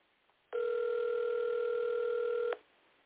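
A single steady ringback tone from an outgoing phone call that goes unanswered, lasting about two seconds over a thin, band-limited phone line, fairly loud and alone before cutting off to near silence.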